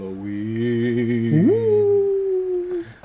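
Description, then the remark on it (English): A person howls like a dog, holding a low drawn-out tone that swoops sharply upward into a long, slowly sagging wail, fairly loud with nothing else around it. “Okay, this is probably off subject, anyway, and not to defer it, but my dog and I, we like to howl at the full moon together.”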